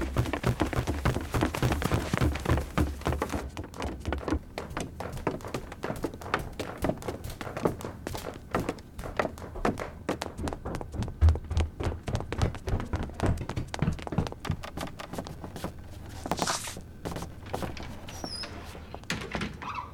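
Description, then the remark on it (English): Rapid, heavy footsteps thud up a staircase in a fast, uneven rhythm, fairly loud, with a few knocks and a faint squeak mixed in toward the end. “It saw me in the window! Run! Upstairs! It's coming!”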